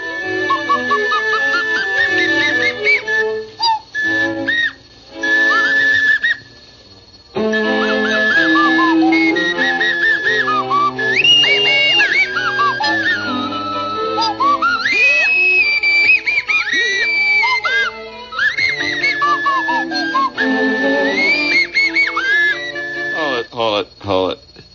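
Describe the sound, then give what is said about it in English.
A nose flute plays a wobbly, breathy whistling melody with sliding pitches, fairly loud, running for most of the stretch with a brief pause, over a busy background of voices. “Mind if I sit in with this crowd again with my nose flute”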